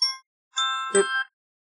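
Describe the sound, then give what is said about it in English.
An alarm goes off with bright, ringing electronic tones: a short chime, a brief pause, then a longer sustained tone with a sharper burst in the middle. No one speaks. “That alarm started going off.”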